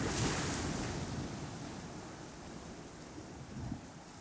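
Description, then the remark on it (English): Ocean waves wash steadily onto the shore in Hawaii in a dense, continuous roar, with a bit of wind buffeting and a slight surge near the end. No voices. “The sea in front of me is smiling, hands clapping like waves crashing.”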